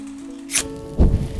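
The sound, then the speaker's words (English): A single sharp, hissing scrape of flint being struck inside a cave, followed a moment later by a soft, low whoosh and crackle as a fire catches on the first try, over a faint steady hum. “I can't remember the last time I lit a fire on my first try.”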